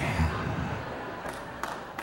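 Brief, light audience applause after a speaker reveals they are turning 50: a steady wash of crowd noise with a few sharper, scattered claps standing out near the end.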